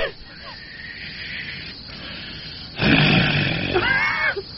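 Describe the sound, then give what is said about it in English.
A voice imitates a Bigfoot's call: a rough, breathy grunting roar swells up loudly, then breaks into a few quick rising-and-falling whistled tones before cutting off. “He'd make a whistle and grunt at the end of it.”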